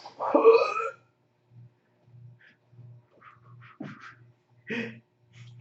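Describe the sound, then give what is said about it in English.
A loud, rasping fart sound, likely made by a voice, bursts out at the start and lasts about a second, followed by faint, scattered low pulses and a couple of brief, quieter sputters. “I farted.”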